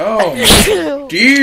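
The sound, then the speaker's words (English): A single short, sharp sneeze from a small pet animal bursts out, with a person's voice speaking just before and after it. “Bless you. Oh, goodness.”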